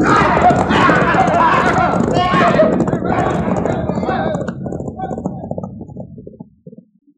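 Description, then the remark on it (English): A dense rush of galloping hooves as a band of riders turn their horses and flee, with men shouting over the commotion, loud at first and then fading away until it's nearly silent. “Turn those horses, boys, and let's get out of here!”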